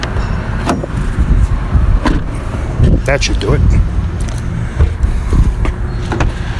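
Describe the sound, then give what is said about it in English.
A car's rear tailgate is pushed shut with a solid thump, among a few scattered knocks and shuffling sounds, and a person speaks briefly. “Did I close the back properly?”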